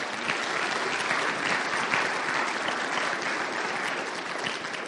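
Steady, dense applause from a crowd, many hands clapping at once in a continuous wash of sound that holds at an even loudness for several seconds without a break.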